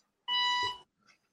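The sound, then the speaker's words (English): A single electronic beep from a monitor warning of a low battery, a steady high tone with bright harmonics lasting about half a second, followed by a faint brief murmur. “Who's backing up the truck? I know. What's going on there? I'm taking my job from me. Where my monitors, the battery's low.”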